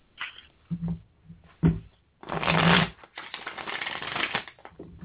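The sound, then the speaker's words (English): A deck of playing cards being shuffled: a few quick riffles and taps, then a long, loud burst of rapid flicking cards that trails into continued shuffling. “Sorry if that shuffling was really loud all of a sudden.”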